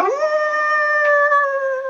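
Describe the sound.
A single long, loud howl, sweeping up at the start and then holding a steady, wavering pitch for about two seconds with no other sounds around it.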